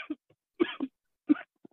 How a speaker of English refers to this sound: Are you okay? Are you dying? Could you hear me coughing? Yeah, I got really excited and you can probably really cut that part out or leave it.